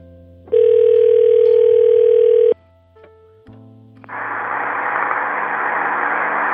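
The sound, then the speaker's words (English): A loud, steady telephone line tone holds for about two seconds on a working phone line, then cuts off into a few clicks as an answering machine picks up, before a continuous static hiss fills the open line. No one speaks. “Where, a month after her death, there was still a working phone line and an answering machine.”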